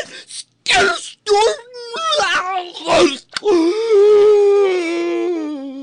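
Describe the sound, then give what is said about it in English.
A voice imitates a terrible, infernal howl: raspy, throaty bursts build into a long, loud, wavering wail that holds a steady pitch and slowly sinks at the end. “And it screams out in this terrible infernal howl of.”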